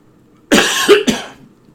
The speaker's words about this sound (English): Excuse the cough. I hope this doesn't start up. My throat's actually feeling pretty good today.